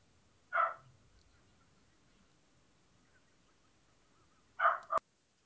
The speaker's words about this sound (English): The dog agrees.